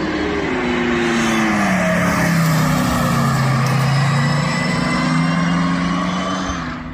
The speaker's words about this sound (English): Yeah, that's not pure electric motor to me. That's a lot of augmented stuff, and that is, I don't know, I think I'm trying to get a bit towards combustion.